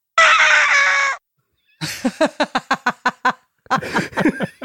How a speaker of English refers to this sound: But all the vocal sounds that are here were either uploaded incorrectly or pitched differently, and they all sound like this.